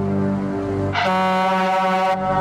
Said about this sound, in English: That scared me. Really? Yeah, King always has a good air horn in his movies.